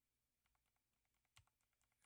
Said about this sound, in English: And it is the K70 RGB MK2 low profile. And I do like that the... Let's hear the keys.